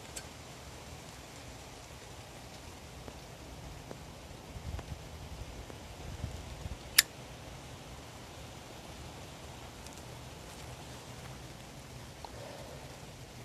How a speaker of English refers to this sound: Oh, it is raining hard. Oh, it's funny because it didn't even look like it was gonna rain. It's one of those beautiful days where there's blue sky and, you know, it's actually not even that cold. But yep, here it is. Here's the downpour.